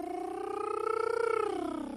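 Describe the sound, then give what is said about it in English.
A cat purring sound effect played from a sound effects machine lasts about two seconds, a steady rapid rumbling flutter with a tonal edge that rises slightly and then dips near the end. No one speaks. “We've got a new sound effects machine for our move to head stuff. Stroking an invisible cat there.”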